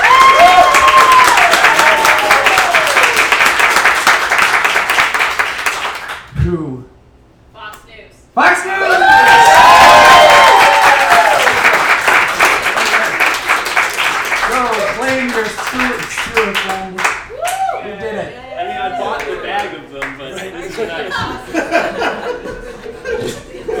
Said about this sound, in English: All right. So we're going to start with a round of applause for Fox News. Can we get a round of applause for Disney?